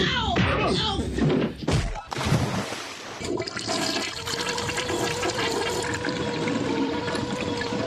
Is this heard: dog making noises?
no